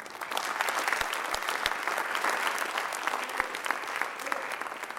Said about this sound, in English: Now clap for that.